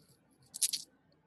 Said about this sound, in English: Something just dropped. I heard something like glass. In the middle of the floor. Is that from that room? In here.